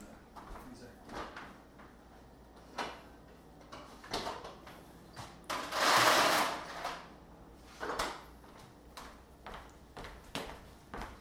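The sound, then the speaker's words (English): A fridge door swings shut with a soft, muffled thump near the middle after cheese is put back inside, surrounded by scattered light clicks and knocks of kitchen handling, moderately quiet. “I popped that back in the fridge because it was, it could be a few degrees cooler.”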